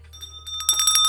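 A bright, clear bell sound effect rings out loud, its tone sustaining as a quick flurry of metallic dings builds toward the end, with no voices present.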